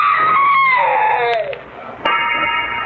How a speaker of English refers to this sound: I never heard that scream.